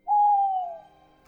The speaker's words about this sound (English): An owl appears, hoots once, and then lands on the edge of the table next to you.